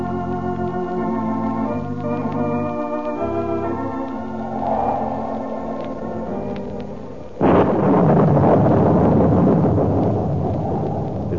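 Orchestral music plays, then a sudden loud crack of thunder breaks in, rolling into a sustained storm rumble with a heavy hiss of rain for the last few seconds, on a stormy night in Reina de Los Angeles.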